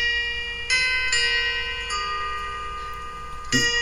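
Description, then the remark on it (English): A little cuckoo clock sounds off, striking a few bright, ringing chime tones that overlap and hang in the air, with a fresh strike near the end and no voices. “You look up, and you look towards the clock, and that's just, it's like a little cuckoo clock, and this is what's coming from it.”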